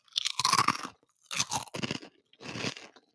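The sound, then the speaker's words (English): Loud crunching of bacon fries, a crispy bacon-flavoured snack, in three bursts of chewing separated by brief pauses, with no talking. “Let me do the bacon fry thing because I've got to do it.”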